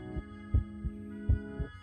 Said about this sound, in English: In this very intimate position, I could feel his irregular breaths on my cheek, and see his heart beating softly on the surface of his chest.